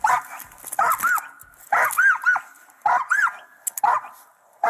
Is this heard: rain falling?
no